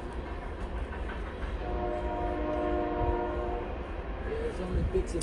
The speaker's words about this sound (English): Oh, we got the train going by. Looks like it's gone.